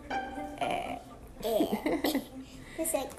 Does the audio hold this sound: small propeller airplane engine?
no